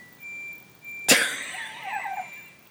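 A clothes dryer plays a chime melody of thin, high electronic notes, interrupted midway by a sharp, loud cough, after which softer wavering tones trail off.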